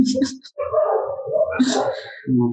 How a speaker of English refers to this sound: The dogs. Yeah. I'm on the 16th floor and the dogs are like, yeah, it's all out.